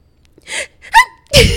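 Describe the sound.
A voice imitates a girl's dainty, high-pitched sneeze: a quick breathy intake, a squeaky tonal 'choo,' then a final breathy burst, all within about a second.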